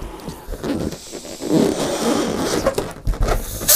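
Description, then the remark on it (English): Air rushes out of a balloon in a fairly loud, sputtering hiss with a rubbery flutter, running steadily for several seconds and ending in a brief, sharper burst of noise. “And surely it's better than listening to two grown men blowing in balloons.”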